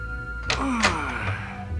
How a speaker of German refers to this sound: Sie standen vor einer Tür mit einem Schild. Darauf stand Club Tesla. Die Tür wurde aufgebrochen.